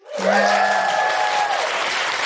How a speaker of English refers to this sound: Thank you so much. Can I just give a big round of applause to everybody today who came, who asked a question or came and told us about their amazing feminist thing?